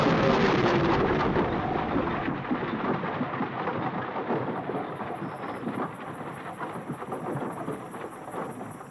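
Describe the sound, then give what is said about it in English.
A sudden, loud, violent storm turning into a twister roars without a break: dense rushing wind and heavy rain with deep thundery rumbling, easing slightly over several seconds. No one speaks. “That storm came up fast. Everybody, hang on. I think it's a twister.”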